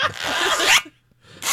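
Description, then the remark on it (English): A long zipper being pulled, a loud ripping buzz lasting nearly a second, then a brief pause before a second zip starts. “Oh, that's a long zip.”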